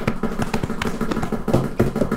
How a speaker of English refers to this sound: I actually think we're going to all do a big drum solo here at the end for to go out with a bang. Let's go. Bang on whatever you got.